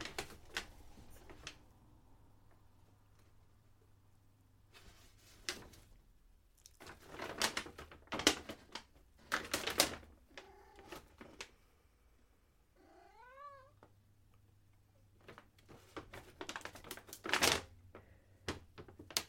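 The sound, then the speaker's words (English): Loud crinkling of a paper bag lying on the floor in irregular bursts as something walks across it, with a brief cat meow partway through. No one speaks. “She's walking on a paper bag that happens to be on the floor.”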